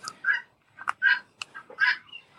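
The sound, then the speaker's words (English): Guinea hens calling in a barn: a run of harsh, raspy squawks in quick, uneven succession, fairly loud, with sharper short chirps between the longer cries and no talking. “Is that the guinea hens? Those are guinea hens, and she knows how irritating guinea hens are to me, and she did that on purpose.”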